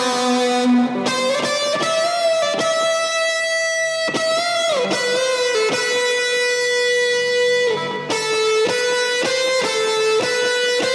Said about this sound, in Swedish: Och på tal om solon så har vi ja, men det sa jag lite, kanske ingen hörde, men att jag la ett Roland Space Echo på hela solot som ja, är rätt trevligt.